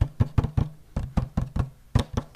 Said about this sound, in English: And the keys are very scratchy. Hear the metal on metal contact? It's kind of gross a little bit. And it's very hollow.